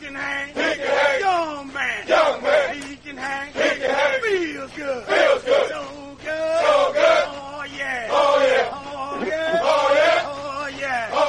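A group of troops chants a military cadence call, known as a Jody, in loud, rhythmic bursts of voices, with a steady marching beat of call-and-response phrases running throughout.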